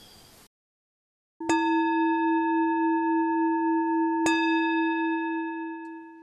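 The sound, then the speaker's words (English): A singing bowl is struck, then struck again a few seconds later, a two-strike signal marking the end of a reading, each hit ringing out in a steady, mellow humming tone with shimmering overtones that sustains loudly without any voices. “So I hope it's clear that when I go into that reading, we'll do that one gong, and then coming out to do some narration, it'll be that two gong hit, or singing bowl rather.”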